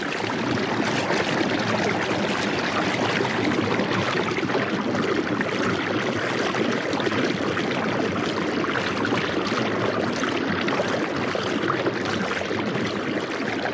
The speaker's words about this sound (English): Andrea Lockwood recorded the cascading waters found at the gorge at Blue Ledge, high in the Adirondack Mountains, as part of her work called A Sound Map of the Hudson River.